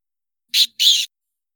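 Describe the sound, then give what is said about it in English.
A voice imitates a rat squeak with two short, shrill, breathy squeals in quick succession, the second slightly longer, with no talking around them. “Wow, that was a very good rat noise. That was a good rat squeak.”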